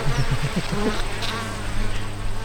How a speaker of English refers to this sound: There's a lot of traffic going in and out of there. Yeah. If they couldn't get out, they would be having problems in the hive. Come on, come on. Come here, little bee, come here.